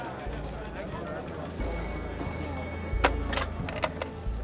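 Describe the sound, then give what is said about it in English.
A telephone at the Kansas City Journal-Post rings twice in quick bright bursts over a low, steady hum, followed by a few sharp clatters like a handset being lifted. “Soon after, the Journal Post received a strange phone call.”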